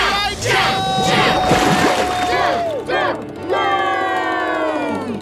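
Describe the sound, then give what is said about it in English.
A group of voices cheers and yells together, cheering on someone about to drive up the side of a tank and go outside, loud and sustained, with overlapping shouts and rising, sliding calls that swell, dip briefly around the middle, then surge again. “Come on, everybody. Let's cheer him on.”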